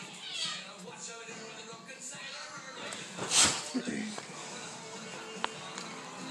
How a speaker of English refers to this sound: Sorry, cat fight. Literally.